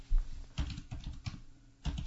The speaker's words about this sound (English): Yes, and everyone can hear me typing away on my computer.